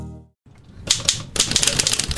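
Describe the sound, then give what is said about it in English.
Manual typewriter keys clack in quick irregular bursts, crisp, with a brief hush before the rapid typing starts and grows busier toward the end; at Jones Typewriter Repair, a shop on Greenwood Boulevard in Maplewood. “It's a pleasantly cluttered shop that smells of typewriter oil.”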